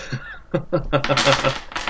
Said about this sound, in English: Marbles. Dice. And I dropped them.